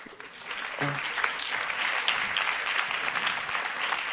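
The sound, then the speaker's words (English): A crowd claps steadily in a dense, continuous patter of many hands, holding an even moderate loudness for several seconds with no voices rising above it. “They are clapping for you with hate.”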